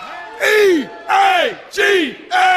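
A crowd of football fans chants together in loud, rhythmic shouted syllables, four strong bursts with brief pauses between them, voices rising and falling in pitch on each call.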